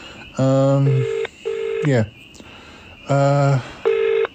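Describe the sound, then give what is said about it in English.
Buzzy, harmonic-rich telephone dialing tones as someone tries to call a person who is not answering: a low beep, then a higher one, then a quick downward swoop, with the two-note pattern repeating. The tones are loud, steady and stand alone with no talking. “Just trying to get in touch with Bettina, actually.”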